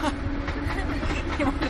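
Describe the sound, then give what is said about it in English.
A train rolls past, a steady, loud rumbling roar with rattling, clattering texture that holds at an even level throughout, heard from inside a Fiat 126P (Maluch) car. “Oh boy, there's a train going by, and that is really going to pick up.”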